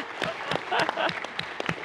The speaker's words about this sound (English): No, that's great. Someone applauding there. I think that does deserve applause.